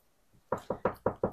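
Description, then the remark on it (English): Five quick, evenly spaced knocks on a plaster and lath wall, each a dull, hollow thud with a short decay, fairly loud after a brief quiet lead-in. “Knock on plaster and lathe. There's wood in there.”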